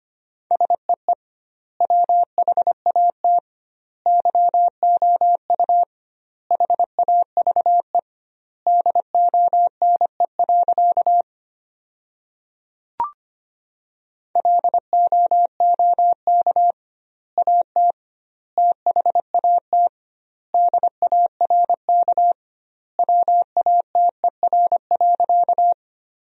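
Morse code sent at 25 words per minute with doubled word spacing, sentences drawn from the 500 most common words: a steady mid-pitched tone keyed into quick dots and dashes, grouped into words separated by short silences, with one longer pause partway through. No voices.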